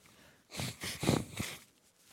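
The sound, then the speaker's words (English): A loud nose blow into a microphone: a few sharp, honking bursts of air through the nostrils over about a second, ending with a short final puff, with no talking. “I hate to blow my nose on the microphone, but you got to do what you got to do.”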